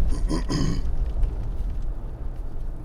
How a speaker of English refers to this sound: Sorry, I probably should sip something here so I don't keep coughing this whole time.